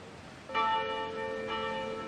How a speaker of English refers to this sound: Join us in ringing a bell from the First Baptist Church in Virginia, one of the oldest Black churches in America, founded under a grove of trees in 1776.